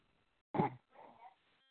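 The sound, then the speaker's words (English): A single snore followed by a softer, breathy exhale from a caller who has fallen asleep on their phone, heard through a muffled, narrow phone line. The sounds are fairly quiet, with no talking. “We got somebody who has fallen asleep on their phone. I can hear them breathing and snoring.”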